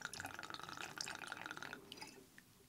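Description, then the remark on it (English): Red elderflower gin pours quickly into a small measure for a cocktail with a bright, bubbling trickle lasting under two seconds, then trails off into a few faint drips. No one speaks. “It's hard to measure what comes out of that thing. It just pours right out.”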